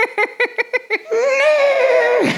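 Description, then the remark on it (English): A person imitates a horse whinny: a quick burst of about six stuttering vocal pulses, then a long, loud, wavering high tone that slides down and cuts off. “Is that a horse?”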